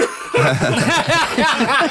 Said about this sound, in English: Wait there, … just has to cough.